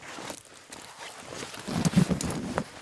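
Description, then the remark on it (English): Heavy footsteps of spacesuit boots, made for walking on rocky surfaces, stomp, crunch and thud across rough, gravelly ground, growing louder and denser toward the end, with a faint breezy hiss in the background and no talking. “These boots are made for stomping and tromping.”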